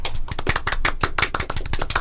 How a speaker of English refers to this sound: Should we all give him a golf clap?